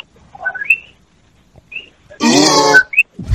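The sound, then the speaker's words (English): A loud, raspy cough bursts out for under a second, with faint whistled notes sounding before it and another rough noise starting at the very end. “Sorry, I was coughing. I couldn't finish the song.”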